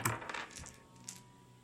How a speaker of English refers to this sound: we should bring one gaming mats in for dice to make them quieter on the table.